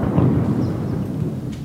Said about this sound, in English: You can hear more explosions a short walk away